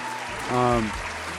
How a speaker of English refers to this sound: but the talent that is available in Sudan, and even the Sudanese that are out of Sudan, respect, and big round of applause.